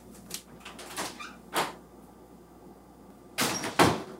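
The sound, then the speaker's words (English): A door swings shut during filming of a scene: a few light taps and rattles, then a louder double clunk as it closes near the end. No one speaks. “And they would spend so much time shooting the door, watching it open, and then watching it close, then shooting another angle, this time from the door's perspective.”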